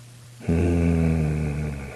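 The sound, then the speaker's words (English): A man lets out a single deep, sustained growl, loud, starting abruptly and holding steady for about a second and a half before slowly fading. No talking. “I know you're saying, did he just growl?”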